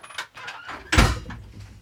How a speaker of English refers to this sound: We might need to push that door shut for this. Okay. Because it's a lot.